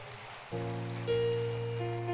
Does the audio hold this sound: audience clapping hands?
yes